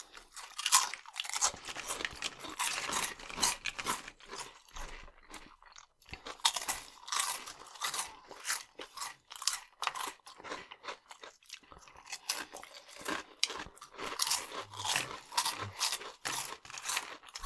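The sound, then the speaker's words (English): Loud crunching and chewing of Flaming Hot Funyuns, a very crunchy snack, with rapid, irregular bursts of brittle cracking that continue steadily with only brief pauses and no talking. “We did save the best for last crunch-wise. They're very crunchy.”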